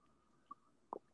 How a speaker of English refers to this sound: I'm going to take a sip of water really quickly because this is embarrassing.